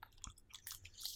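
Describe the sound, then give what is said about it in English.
Wet chewing of gum with smacking and squelching mouth sounds, several quick moist chews in a row, fairly quiet with no talking. “I just hear all the chews and the saliva you're producing.”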